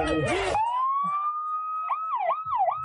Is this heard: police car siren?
yes